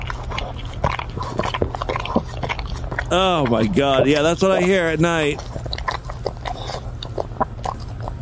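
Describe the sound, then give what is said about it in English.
Close, wet smacking and slurping of a dog licking, recorded for ASMR, repeats steadily throughout, with people talking over it and a wavering, drawn-out tonal sound rising in the middle. “ASMR, 9 minutes of dog licking.”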